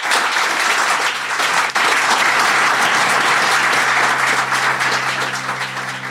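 Sustained applause from an audience, a dense, steady wash of many hands clapping at an even loudness for the full stretch, with no voices breaking through and a slight easing at the end.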